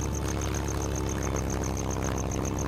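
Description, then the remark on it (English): A steady, loud droning of a propeller plane's engine as it takes off from occupied France bound for England, with a low rumble and a rapid, regular high-pitched pulsing on top, continuous throughout with no voices. “The exchange took no more than 20 minutes before the plane took off again, bound for England and Allied territory.”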